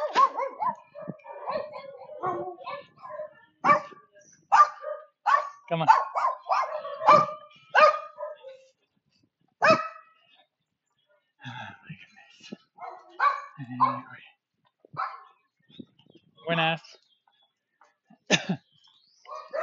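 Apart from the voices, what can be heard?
dogs barking and howling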